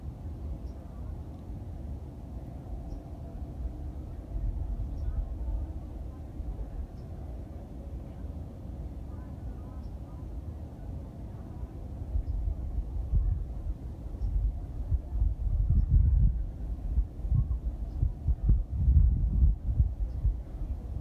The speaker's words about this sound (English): You can hear the background very well. There's some birds chirping, light breeze, and probably 100 to 150 people on the trail somewhere. It's a very large park.